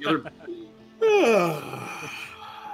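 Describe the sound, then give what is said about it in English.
A voice imitates a game character named Cal snoring: a single loud, drawn-out snore, a raspy throaty rumble with a falling pitch that lasts about a second, preceded by soft vocal murmurs. “I'm going to say that Cal snores now.”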